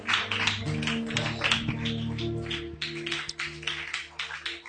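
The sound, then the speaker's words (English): A church audience claps together in a dense, steady patter while waiting for a church leader to arrive, carried over sustained low musical tones that run through the whole passage at a moderate volume. “Keep clapping your hands till he comes.”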